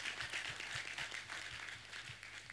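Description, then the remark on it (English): An audience claps their hands for the Lord together in a steady, brisk rhythm, the dense patter of many hands carried over a regular low thump keeping time. No one speaks. “Keep on clapping.”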